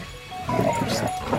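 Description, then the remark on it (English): Dogs bark in a short, uneven burst of a few yelps and barks, moderately loud, with a faint hum underneath. “The dogs have been quiet this entire time, and now...”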